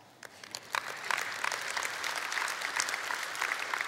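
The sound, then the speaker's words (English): An audience breaks into steady applause, a dense wash of hand claps that builds quickly after a few scattered early claps and holds at a fairly even level throughout. “Yeah, you clap, but it starts all over, doesn't it?”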